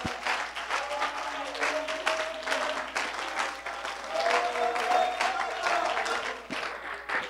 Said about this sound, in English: Oh, clap your hands to the Lord if you believe that.